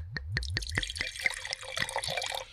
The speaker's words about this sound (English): Wow. That was a fire. Fuego. That was a fuego pour. Yeah. Hell yeah.